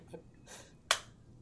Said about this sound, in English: Do I clap? Yeah. You can if you like. That's what we gave you, those clapper, the little robot. Yeah, the clapper hand. Yeah, that's great.